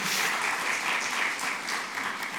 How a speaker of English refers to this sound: We didn't need an applause, but that's okay. It is exciting.